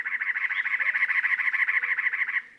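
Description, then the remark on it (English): A cactus wren's loud, harsh rattling song: a rapid, steady string of raspy chugging notes lasting a couple of seconds, heard clearly on its own before it stops abruptly. “Males often perch at the top of a saguaro, their loud rattling songs easy to hear hundreds of yards away.”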